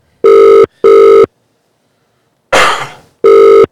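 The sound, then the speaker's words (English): A telephone rings as a call is placed to a customer, with short, loud electronic tone bursts: two quick pulses, a pause, a cough, then another pulse. Each ring holds a steady, buzzy mid-pitched tone. “Basically, I just ring a customer.”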